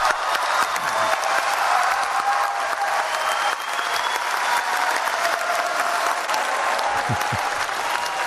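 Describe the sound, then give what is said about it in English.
Sustained, loud applause from a large crowd of delegates fills the room, with scattered cheers and whoops rising above the dense clapping throughout, steady in intensity from start to finish, as the Paris Agreement is adopted. “And the crowd went absolutely wild.”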